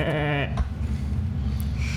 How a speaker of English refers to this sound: You hear a goat bay in the distance.